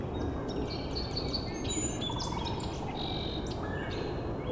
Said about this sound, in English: Red-bellied woodpecker too.